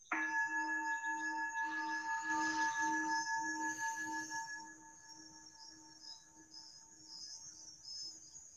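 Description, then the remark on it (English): A mindfulness bell chime from a phone rings out as a single sustained, shimmering tone with several steady pitches, loud at first and then slowly fading over several seconds, with no talking. “There goes my phone. Mindfulness bell.”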